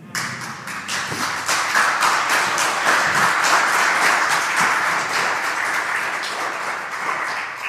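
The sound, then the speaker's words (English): A church audience applauds steadily for several seconds to give glory to God, a dense wash of many hands clapping at an even, sustained loudness with no voices rising above it. “Father God, all the glory and applause is for you.”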